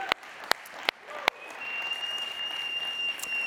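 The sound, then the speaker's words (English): Congregation applause at Life Church, clapping for the church's young people who led worship: a few sharp, separate claps at first, then a steady, even wash of clapping, with a thin high whistling tone running through the latter half. “Yeah, we can clap for them too.”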